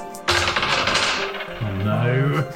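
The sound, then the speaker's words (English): A sharp clatter of dice, rolled for an intimidation check, tumbling across a hard tabletop, rattling briefly before settling, while a voice starts speaking toward the end. “Okay, roll an intimidation check.”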